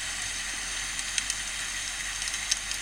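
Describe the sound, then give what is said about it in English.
A fireplace fire crackles steadily, a soft continuous hiss broken by a few sharp pops and snaps scattered through it, fairly quiet, with no voices. “It's time for a little fireside, a butler ghost tale here. So light the fire.”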